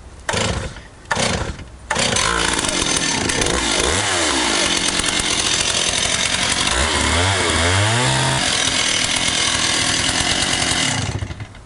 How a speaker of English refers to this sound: I'm just going to start the chainsaw